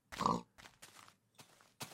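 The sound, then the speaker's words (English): A saddled pig in a video game grunts several times in short, uneven bursts, the first one loudest and throatiest, followed by quicker, softer snorts. “Get back here, pig. Well, he's gonna wander.”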